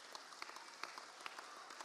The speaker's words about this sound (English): Come on, give God a hand clap. That's for the Lord.